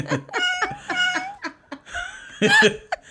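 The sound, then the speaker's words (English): Voices imitate cat meows, several drawn-out, wavering mews in quick succession, mixed with laughter and chuckling from more than one person, loud. “And this gets a meow. Two meows.”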